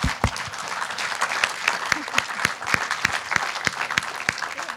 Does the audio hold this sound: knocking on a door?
no